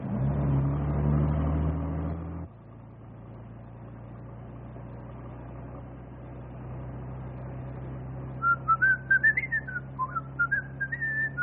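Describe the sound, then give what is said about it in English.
A person whistles a short, wavering tune near the end, rising and falling in pitch over a steady low bus engine rumble that follows a louder burst of motor noise at the start. “you have the whistle? Yep. Keeps my mouth shut while I'm a-thinking with my head.”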